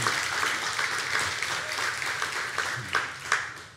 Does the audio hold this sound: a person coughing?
no